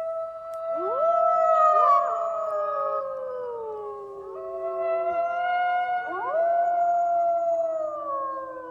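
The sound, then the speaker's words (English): Several wolves howl together in long, overlapping wavering tones that rise and slowly fall, a sustained chorus lasting throughout with no talking. “It's not hard to recognize the call of the wolf.”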